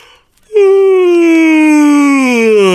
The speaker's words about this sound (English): See, you made that couth by turning that yawn into a nice little vocal scale. It was, yes, thank you. A little siren sigh. Yeah, a little siren sigh, that's me.